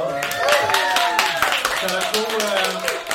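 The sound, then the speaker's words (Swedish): Steady applause from a crowd for a band, with dense overlapping claps lasting the whole few seconds, mixed with voices and cheering rising above the clapping. “Får jag få en applåd?”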